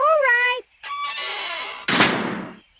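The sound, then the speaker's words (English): A door swings shut: a brief high creaking squeal, a rough rattling scrape, then a loud sudden slam whose noisy burst fades out over about a second. “Would you close the door for me, please?”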